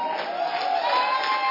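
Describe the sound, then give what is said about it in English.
A crowd claps and cheers for Jesus in a dense, steady wash of sound that holds at an even loudness for the whole moment, with no single voice standing out. “Is that for Jesus or are you clapping for Jesus?”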